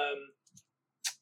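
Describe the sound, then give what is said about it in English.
Dice being rolled: after a brief bit of voice, a couple of soft clicks are followed by a single short, bright clatter, then quiet. “Roll whatever dice.”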